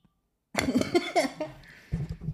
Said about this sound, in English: Sorry, guys. I'm still sick. Well, no, I'm not sick. I just have a cough.